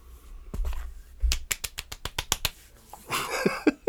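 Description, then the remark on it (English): A quick run of about nine sharp, evenly paced, crisp slaps of a person's hand against their own body, followed by a brief burst of rustling noise. “That wasn't applause. Man, that wasn't. That wasn't. I'll be slapping myself because they did a whole rap battle.”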